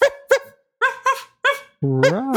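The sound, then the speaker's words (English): A person imitates a dog with five quick, loud barks, then finishes with a longer, wavering whine-like bark. Nobody speaks. “Woof, woof, woof. I really relate to Fluttershy. Woof, woof.”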